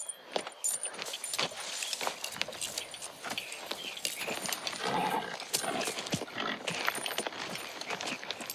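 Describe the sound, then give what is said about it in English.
A horse's hooves clip-clop steadily over a rustling, jingling background, with a brief soft whinny partway through. “It's for the horse.”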